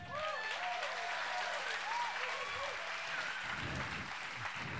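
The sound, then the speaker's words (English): A crowd claps and applauds steadily, the dense patter of many hands filling the whole stretch, with scattered whoops and cheers rising over it. “If you don't clap, would you clap if it was your miracle? Let's try it again.”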